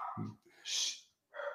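Dogs barking in a few short, separate bursts, somewhat faint, with brief pauses between them and no talking.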